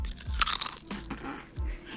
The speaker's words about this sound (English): Listen to this crunch.